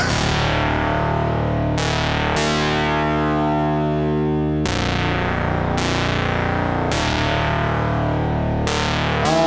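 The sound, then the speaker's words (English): A buzzy, harmonically dense synthesizer tone from AJH Synth modules, with pulse-width modulation run at audio rates, struck again every second or so; each new note has a bright attack that mellows, with a lingering infinite-style reverb wash underneath. “what they've done is they've basically taken PWM and run it at audio rates.”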